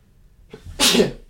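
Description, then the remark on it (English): A single loud sneeze with a short inhaled buildup followed by a sharp, breathy burst, heard on its own without any talking. “Had to sneeze.”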